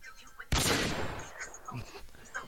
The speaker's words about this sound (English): There was a gunshot for you